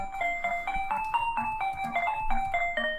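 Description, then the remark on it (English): The Bubble Bobble retro arcade video game theme plays on its own: bright, buzzy chiptune notes hop through a cheerful mid-to-high melody in a steady, quick rhythm over a soft bass line. “I think it was Bubble Bubble. Bubble Bobble, yeah.”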